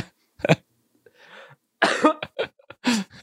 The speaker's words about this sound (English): you're making me cough because you're making me laugh, man.